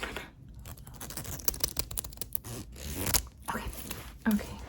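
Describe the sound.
A jacket zipper is worked, its teeth rattling in quick, uneven bursts of clicks over several seconds, with faint murmured voice underneath.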